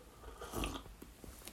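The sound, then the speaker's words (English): A single quiet sip of tea, a soft slurping draw of liquid followed by a few faint mouth clicks and a swallow, with no talking. “And then, and I'm going to take a sip of my tea first, get ready.”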